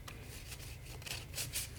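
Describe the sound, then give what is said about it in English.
A Crowley Toth tarot deck being shuffled: soft, papery riffling bursts that come in uneven flurries, growing a little louder toward the end, over a faint low hum with no talking. “We're going to shuffle a little bit and we're going to ask the Toth Deck how it would like to say hello.”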